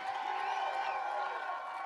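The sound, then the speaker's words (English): A standing audience claps and shouts for Jesus together in a steady, continuous roar, with many raised voices blending over dense applause throughout the short stretch. “If you're a part of that army, give Jesus the biggest hand clap and biggest shout.”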